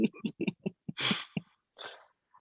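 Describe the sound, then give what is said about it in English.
A sharp sneeze bursts out after a few quick catching breaths, followed by a softer exhale or sniff, then quiet. “God bless you.”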